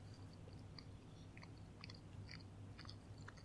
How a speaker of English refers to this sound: Honestly, I bet this is going to be chewy. I'm sure it's going to be very chewy. Let's see here. The chewing of the Twizzler is the best part.